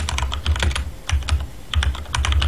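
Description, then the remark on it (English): Rapid clattering of keys on a computer keyboard while typing a chat message during a video game, a quick irregular stream of sharp clicks in short bursts, fairly loud and with no voices over it. “Type chat then.”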